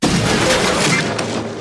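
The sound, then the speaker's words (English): A piano smashes against the door of Bender's mother in one loud, violent crash, a dense burst of splintering noise that holds for over a second before easing slightly at the end. “How's she gonna hear you knocking? I thought she was a robot arm. She's not deaf, you idiot. Amy, hand me that piano.”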